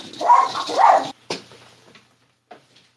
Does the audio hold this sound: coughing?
no